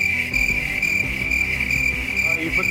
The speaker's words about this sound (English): You put the crickets on. You're welcome for so much inspiration on your fucking soundboard and shit. That would be the most used fucking drop on this show.